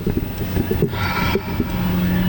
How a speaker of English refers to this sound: You're hearing rushing cars, okay?